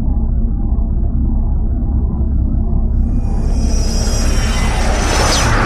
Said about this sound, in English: What was that? It looked like some kind of jet?